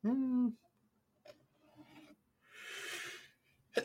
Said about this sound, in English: Bless you. It's always great to see someone wind up for a sneeze. It looks like their body was possessed. It looks like you were jumping the multiverse.